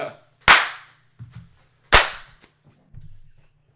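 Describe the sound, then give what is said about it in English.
Two loud, sharp hand claps, one by each of two people, about one and a half seconds apart, each a crisp snap that rings out briefly, with a few faint knocks and shuffling noises between and after them. “I just thought it was funny that both of you clapped for no reason.”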